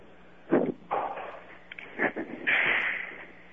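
A few irregular knocks on a third-floor bathroom door, loud, with short gaps between the thuds, ending in a longer rustling scrape. Nobody speaks.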